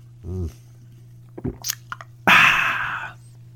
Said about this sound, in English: But I'll just say this is a Coca-Cola Zero Sugar, and it is good. It is very good. I'm going to take another sip.